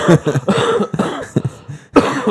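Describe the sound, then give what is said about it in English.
A loud fit of coughing, with several harsh coughs coming in quick succession and a short pause before a final burst. No one speaks. “The cough drops are in my car. It's awful.”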